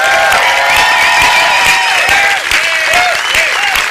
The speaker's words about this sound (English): take just like 5 seconds and make enough noise to be picked up in this small microphone and say to him how grateful we are for his service to our country and to us. Would you just, by a hand clap, do that right now?